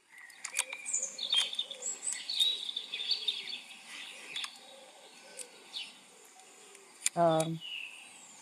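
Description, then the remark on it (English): A lively chorus of birds chirping and tweeting throughout, overlapping high calls, with one louder, drawn-out call breaking in near the end. “Those are birds. Those are beautiful birds.”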